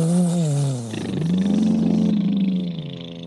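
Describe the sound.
A person makes a loud, rumbling vocal engine noise, a low throaty drone that dips and then swells in a long sustained growl, imitating a car engine running during an improvisation scene.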